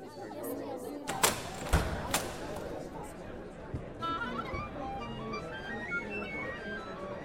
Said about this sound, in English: Oh, the milling crowd. Yes, it's another grand season for the Sonic Summerstock Playhouse.